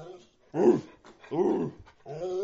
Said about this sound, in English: We get the dog's 2 cents.